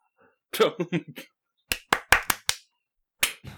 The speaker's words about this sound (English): All right, you ready? Why isn't my mic picking up my clap? Mid podcast clap. Ready? 3, 2, 1. Why doesn't my Discord pick up my clap?